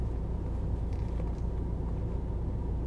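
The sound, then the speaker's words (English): A Mercedes-AMG GT sports car engine rumbles low and steady for the whole stretch, a deep continuous drone with no clear rise or fade and no voices. “Looks like a $100,000 plus Mercedes AMG. I think it's the GT AMG. I'm waiting for it to come around the other side.”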